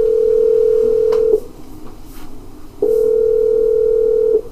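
A steady, mid-pitched telephone tone sounds for about a second and a half, stops during a short pause with faint line noise, then returns for another long, even stretch as a radio host calls back an earlier caller. No one speaks.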